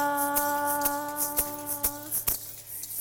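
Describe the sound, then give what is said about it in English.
Keys jingle and clink in a steady beat, about every half second, five or so sharp metallic shakes, shaken by members of a church audience as makeshift percussion instruments, over a sustained held tone that fades out near the end. “I appreciate the makeshift instruments with keys and other things out in the congregation.”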